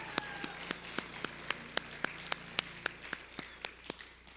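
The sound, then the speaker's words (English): An audience at a church service claps together as a clap offering to God, in a steady, quick rhythm, about sixteen sharp, even claps landing roughly four per second, with no voices over them. “Can we give God a better clap offering than that?”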